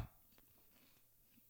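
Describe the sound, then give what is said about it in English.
Quiet chewing right into the microphone, with a sharper sound at the start, followed by a few soft, irregular mouth clicks and crunches. No one speaks. “No, you're just like chewing into the mic.”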